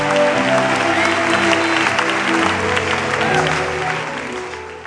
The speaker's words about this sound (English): Clap your hands and worship Jesus.